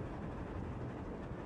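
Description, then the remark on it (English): A train rolls steadily along the tracks over a bridge, a continuous low rumble with a faint rhythmic rattle, unbroken throughout, with no voices. “The train keeps moving along, and soon they come to the other side of the bridge.”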